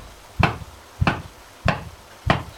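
Four heavy, evenly spaced knocks on a door, each a deep thud with a sharp edge, landing in a slow steady rhythm with nothing else audible between them.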